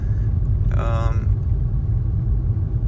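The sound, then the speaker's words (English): A steady, heavy low rumble of a car driving along a nearly empty road, heard from inside the cabin, with one other car behind; continuous throughout with a brief voiced sound near the start. “So, you know, I'm kind of the only one on the road. Behind me there is another car.”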